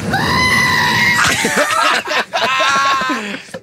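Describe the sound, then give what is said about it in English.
A person loudly imitates a screaming goat, letting out a strained, wavering bleat-like scream that lasts a few seconds with brief breaks, with no other talk. “Is that like the screaming goat that was on YouTube”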